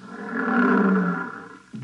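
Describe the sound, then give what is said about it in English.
Lions about 15 feet away roar in a deep, rumbling bellow that swells to full strength and slowly fades, followed by the start of another low roar right at the end. No one speaks. “Oh, here come the lions.”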